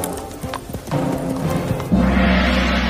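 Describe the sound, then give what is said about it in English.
Horse hooves clatter in a quick, rhythmic clip-clop, joined by a brief whinny, the galloping growing into a louder, rumbling rush near the end, as a horse frightened by a banged gong runs away. “This scared the horse and sent him running away.”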